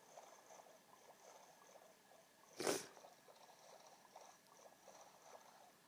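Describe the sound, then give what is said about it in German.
Video game boat rowing: one short, fairly loud paddle splash rises midway over a faint, steady bed of lapping water, with no one talking. “Da denke ich, kann ich jetzt eigentlich mal stoppen und rausgehen und nach einem Dorf suchen, weil ich finde so keins, wenn ich einfach nur rudere.”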